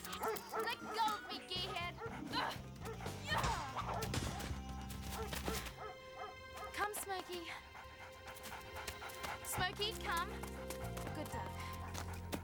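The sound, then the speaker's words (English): A dog barks several times within a busy cartoon soundtrack of music and clattering, hoof-like sound effects, all fairly loud and continuous. “They're afraid of a dog.”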